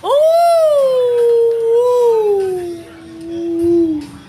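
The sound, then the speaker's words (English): A person's voice imitates a dolphin's call with one long, loud, tonal hoot that rises briefly, then slowly glides downward in pitch for about four seconds, heard on its own without any talking. “That's a dolphin.”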